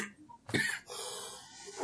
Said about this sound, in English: Excuse me. Sorry about that. Bless you. Is there something in particular you say when someone coughs?